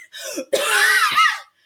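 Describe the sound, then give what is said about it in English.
Two loud coughs: a short hack followed by a longer, raspy, strained cough that trails off, heard alone with no talking. “Now cough forward.”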